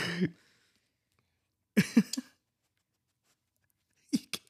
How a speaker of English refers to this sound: I can hear him sniffing on the mic.